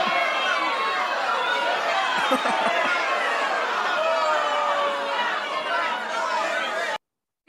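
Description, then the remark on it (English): An angry crowd roars, with many voices shouting and murmuring over one another at a steady, loud level for about seven seconds before cutting off abruptly into silence. “Angry crowd.”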